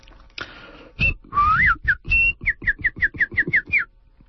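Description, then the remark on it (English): A person whistles a bird-like song while walking, imitating the songs of birds: a rising slide followed by a quick, evenly spaced run of about eight short chirping notes, with breathy noise under each. “While I walk, I whistle and imitate the songs of birds, just as my grandmother taught me.”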